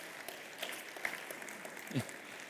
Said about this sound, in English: Welcome to the Gilston people. The Gilston people. Okay, give them a huge hand clap. It's good to have them in the house tonight.